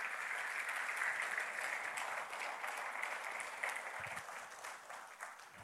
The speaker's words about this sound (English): Amen. Can we give God a hand clap of praise for his word?